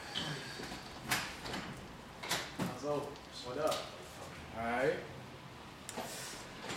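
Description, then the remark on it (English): A door opens and shuts with a few sharp clunks and rattles, spread over several seconds, as a guest arrives at a studio, while voices murmur in the background. “Is that the fucking door? Oh, I think it's the door.”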